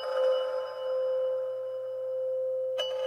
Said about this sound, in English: But when Thomas took the pen, there came the sound of a bell.